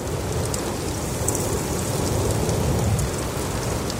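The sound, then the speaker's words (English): Breeze moving through a redwood canopy: a steady, dense rushing hiss with a low rumble underneath, holding an even loudness throughout with no voices. “The effect of breeze in the canopy of the redwoods.”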